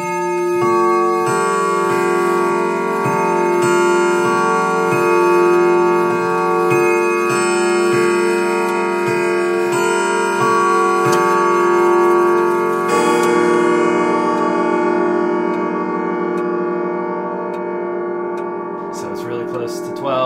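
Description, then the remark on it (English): A clock ticks steadily as ringing chime tones build and sustain, then the ticking gives way to a long run of overlapping bell-like chimes, twelve in all marking midnight, that hang in the air and slowly fade. “and then it did start doing the dings. That means 12.”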